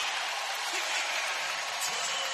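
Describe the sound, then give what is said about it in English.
A big basketball arena crowd at a Warriors game roars and cheers as Kevin Durant comes back into the game, a dense, steady wash of noise that stays loud and unbroken for the whole moment, with no clear individual voices standing out. “And the crowd roars.”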